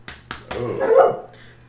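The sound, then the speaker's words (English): A dog gives two short, sharp yips followed by a longer, louder bark that trails into a whiny tone, with no talking over it. “Oh. Bella. Woof.”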